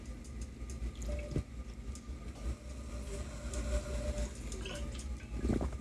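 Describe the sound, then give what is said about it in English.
Faint, thin squeaks from a big 40-ounce reusable water bottle with a plastic lid, a couple of short high-pitched squeals over steady rumbling background noise, with small clicks and sloshing in between. No one speaks. “But the thing that kind of sucks is that it still makes the squeak sound. It's not as noticeable, but listen.”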